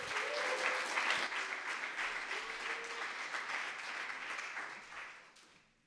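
A church crowd claps steadily in a dense, crackling wash of applause, with a few raised voices cheering over it as a guest speaker comes up, before the clapping tapers off and fades out at the end.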